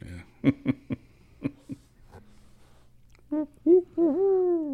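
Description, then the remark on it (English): A person imitates a barred owl's 'who cooks for you' hooting call, a few sliding, rhythmic vocal hoots ending in a drawn-out falling call, preceded by short breathy, laugh-like bursts; fairly loud. “That's like when you do a Bart Owl. Who cooks for you? Who cooks for you all?”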